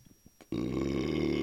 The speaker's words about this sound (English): I was just talking. I didn't even take another sip of beer. Already burping.